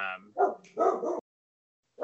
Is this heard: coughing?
no